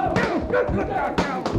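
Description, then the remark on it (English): A fistfight in progress down a street: a little man slams away at another, a few heavy, irregular thuds of punches landing amid shouting, grunting voices and crowd commotion, all fairly loud and chaotic. “And that little fella slamming away at him is our Texas friend, ….”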